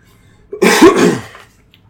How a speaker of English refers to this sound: Sorry. One second. I coughed again.